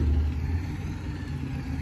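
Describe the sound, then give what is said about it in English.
A truck engine rumbles while someone directs the truck, a deep steady drone with a slight rev rising and falling, heard on its own without any voices. “I gotta direct this truck.”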